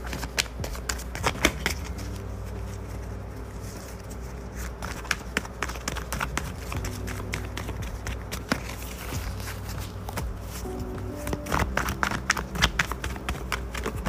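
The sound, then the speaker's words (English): Shuffling of a deck of cards for a card reading while sage burns: repeated crisp papery riffles and soft taps come in bursts and pauses over a low, steady background hum, with no one talking. “The sage is burning, and let's shuffle the cards.”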